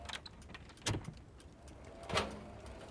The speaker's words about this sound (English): Mind if I lock the door? I insist upon it.